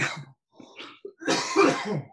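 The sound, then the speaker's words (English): A fit of harsh, hacking coughs after a large cannabis dab, several bursts in quick succession, building into a longer, raspy, strained cough at the end. No one speaks. “Dabs are weird to me because like they don't tickle the way flower does, but usually if I'm gonna die coughing, a dab's gonna do it.”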